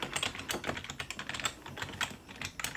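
Quick, irregular clicking of keys on a computer keyboard, a steady patter of soft taps with no voices.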